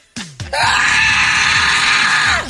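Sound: scream sound effect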